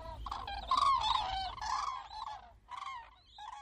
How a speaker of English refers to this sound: the crane recordings were from the Rügen Islands in northern Germany, courtesy of Chris Watson.